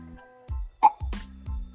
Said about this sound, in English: Did you burp? I think it was like a confusion burp. That wasn't him. It says it wasn't him.